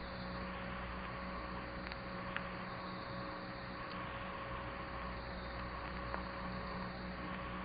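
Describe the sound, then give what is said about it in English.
A steady wash of city street traffic at night near Nelson's Column, a continuous low rumble and hiss of engines and tyres, with a faint constant hum and a few small clicks, no voices. “I'll just let you listen to the traffic and the sound of the siren for a moment.”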